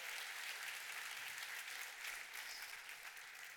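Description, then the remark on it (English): A church audience at Chapel Roswell applauds steadily after worship songs, a dense wash of many hands clapping at once with no pauses, holding an even loudness throughout before easing slightly at the end. “You're clapping for me, right?”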